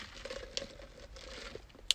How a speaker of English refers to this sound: Just for context, I did hit my cup against the microphone of my phone, so we just did a cheers, if you want to huzzah to the revolution.